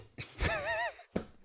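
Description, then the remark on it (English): A sharp cough into the microphone, with a short voiced, wheezy catch of breath after the first burst and a second quick cough a moment later. “That I did not expect to cough, listeners. I'm sorry that you had to hear that.”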